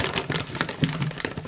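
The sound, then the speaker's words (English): Wet chewing and crunchy mouth noises of someone eating right at a blue Yeti microphone in an apartment, a quick irregular run of crackly clicks and smacks at moderate loudness, with no talking. “Man, you can't eat on podcasts. That's disgusting. Maybe if I chew farther away from the mic.”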